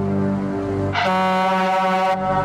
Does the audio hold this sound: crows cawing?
no